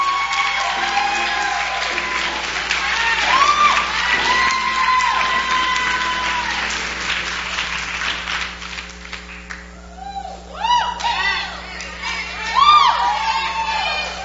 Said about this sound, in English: And let's welcome her with a round of hand clap of praise.